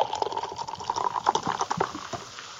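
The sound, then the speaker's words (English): A bright green drink smelling of kiwi and candied lime pours steadily into a glass, a continuous glugging splash with bubbly fizzing and a rising fill tone, no voices over it. “I'm actually going to pour it in the glass.”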